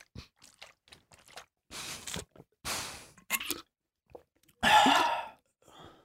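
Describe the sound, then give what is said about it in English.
Exaggerated slurping and gulping as someone takes a sip of water as ferociously as possible: a series of wet mouth noises and swallows, capped by one louder splashy plop near the end as the water slides back down, with no one talking. “Oh, I like the added plop. That was the water sliding back down.”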